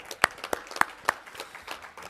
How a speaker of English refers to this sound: Well, a big applause